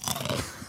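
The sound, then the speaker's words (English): Crunching on crisp, curly snacks: a quick flurry of dry, brittle crackles and chewing bites packed into under a second, fairly loud, with no talking over it. “People, I brought some curly things up here too. Let me see. What do those taste like?”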